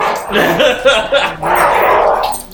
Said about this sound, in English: I have a feeling that the dogs in the cave have gotten a little crazy. Rambunctious.